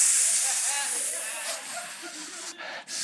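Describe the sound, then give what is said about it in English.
A voice imitates a lit fuse with a long, steady, high-pitched hiss lasting about three seconds, briefly breaking near the end before hissing again. No words are spoken. “The fuse was lit.”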